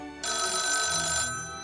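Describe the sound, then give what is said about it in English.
A telephone bell rings once in a single sustained, bright metallic burst lasting about a second, fairly loud, with no talking; Sam Wainwright is on the phone. “Sam is on the phone.”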